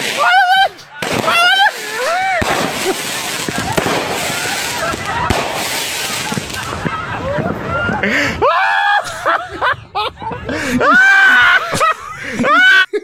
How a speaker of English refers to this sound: Fireworks fucking up is one of the funniest things ever. Yes, it is. Well, until it blows limbs off, but yeah.